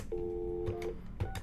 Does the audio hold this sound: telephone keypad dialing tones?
yes